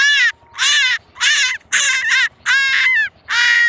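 A vixen, a female fox, screeches in a run of six harsh, raspy, high-pitched cries, each about half a second long, separated by short gaps. The calls are loud and there is no talking.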